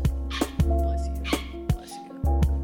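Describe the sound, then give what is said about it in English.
A sudden sneeze bursts out among several short, sharp noisy outbursts over a steady low hum, with no talking in between. “Bless you.”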